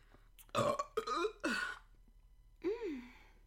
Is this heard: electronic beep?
no